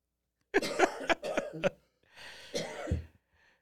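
A person coughs in a rapid burst of four or five harsh coughs, then a pause and a longer, raspy wheezing cough that trails off; close and fairly loud, with no talking.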